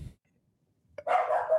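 dog barking

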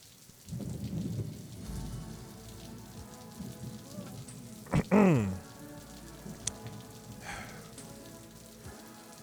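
rain falling

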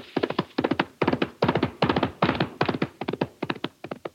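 approaching horse hoofbeats

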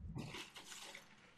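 water running

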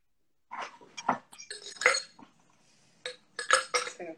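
glasses clinking

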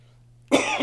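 coughing

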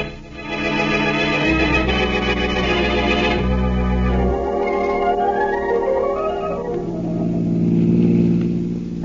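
car engine

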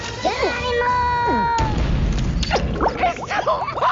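cat meowing

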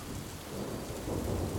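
rainstorm with thunder

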